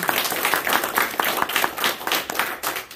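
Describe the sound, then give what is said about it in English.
A church audience claps in praise of mothers, a dense, steady stream of many hands striking together at once, sustained and fairly loud with no voices standing out. “Let's give mothers another hand clap of praise.”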